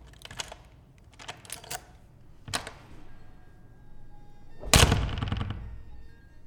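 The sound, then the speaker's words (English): A skeleton key rattles and clicks in the keyhole of a shop door with a few sharp metallic ticks, then a louder clunk and brief scraping rush as the door swings open. No voices. “put the skeleton key in the keyhole and turned it to open the door.”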